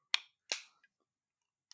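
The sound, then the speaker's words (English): A small can of double fudge cream stout beer, cellared since December, is opened: a sharp metallic pop, then a second burst with a brief fizzy hiss that fades quickly, and a faint click after. No one speaks. “And I'm not really sure what I know the ABV is on here somewhere, but I'm too eager to just pour this thing rather than to read this paragraph they have. So I'm just going to open it.”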